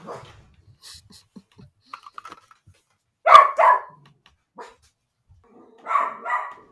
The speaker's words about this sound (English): kick his dog? There's suddenly like a horrible like a yelp. Squeal.